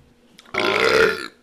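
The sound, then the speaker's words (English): A single loud, drawn-out burp lasting under a second, rumbling and throaty, with a faint breathy intake just before it. “And we're going to burp a little bit too.”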